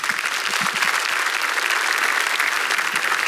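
An audience applauds steadily, a dense wash of many hands clapping at an even, fairly loud level throughout, with no one speaking over it.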